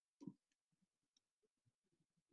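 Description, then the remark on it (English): Someone types on a computer keyboard: one sharper key strike, then a quick, uneven run of soft clicking keystrokes, quiet, with no voices. “I'm typing Highlander Quickening into YouTube here”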